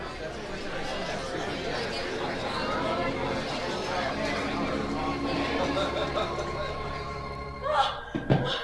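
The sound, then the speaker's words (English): Busy restaurant din: many overlapping voices chatter steadily throughout, with a couple of sharp clattering thuds, like dishes or a door, near the end. “Situations where even a person with normal hearing has difficulty in understanding speech. Restaurant noises, for example.”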